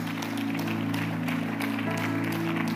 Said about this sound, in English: Can we give all of our guests a wonderful hand clap once again?